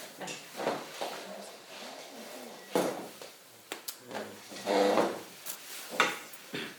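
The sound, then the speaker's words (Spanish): Wooden furniture scrapes and knocks: a chair being shifted in a series of uneven drags and bumps, with faint voices murmuring, at a prayer gathering. “Después pasen la silla.”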